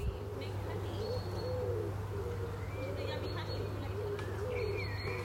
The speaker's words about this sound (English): I know I can hear a pigeon. Don't think I need an app for that.